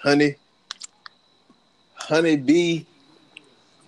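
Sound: smacking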